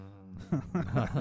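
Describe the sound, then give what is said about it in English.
A person growls in several short, rough, low-pitched bursts following a brief steady tone. “That's a very sincere growl.”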